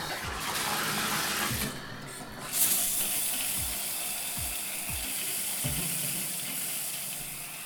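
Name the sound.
shower running water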